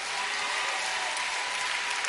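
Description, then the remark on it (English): Women clapping together in steady, continuous applause, a dense hiss of overlapping claps that stays fairly loud and even for the whole two seconds, with no voices. “The sisters are clapping.”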